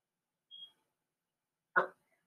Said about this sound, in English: With your smoke alarm chirping, you effeminate pantyhose wearing bastard.